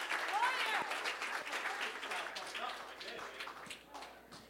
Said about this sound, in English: Applause for me. Thank you. Thank you for sharing.